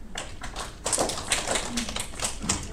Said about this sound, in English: All right, let's vote. So we got …. Everybody clap.